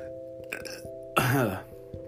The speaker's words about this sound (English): That was a gross burp. It didn't taste good.